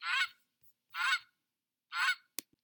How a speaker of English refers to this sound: encouraged me to fly forward with their enthusiastic honks